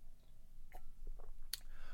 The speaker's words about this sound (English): Now, let me have a sip real quick.